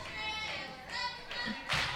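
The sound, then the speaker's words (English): A crowd cheers at a game between the Leases and the Shrimps, in a noisy wash of voices, with bursts of louder excitement and some clapping rising and falling over two seconds. There is no clear speech. “And somebody's cheering.”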